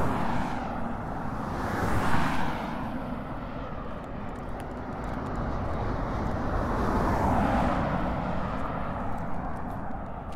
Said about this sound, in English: Here comes a plane. Here we go. Here's the plane.